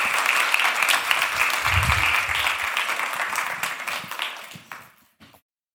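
A room full of people applauds steadily, the dense clapping holding strong for several seconds before tapering off and fading into silence near the end.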